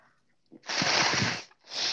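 A person blows their nose in two loud, harsh, breathy bursts: a long honking blow followed by a shorter second one after a brief pause. No one talks.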